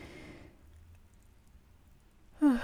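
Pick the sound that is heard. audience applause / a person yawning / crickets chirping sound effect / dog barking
a person yawning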